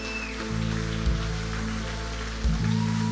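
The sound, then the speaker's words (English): A church audience applauds steadily, a dense, continuous patter of many hands clapping at once, with sustained low musical tones sounding underneath throughout. “Come on, church. Let's give them a big round of applause.”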